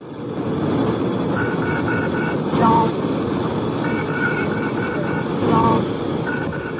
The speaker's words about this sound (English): At 8:45 and 5 seconds, the stall warning sounds in the cockpit.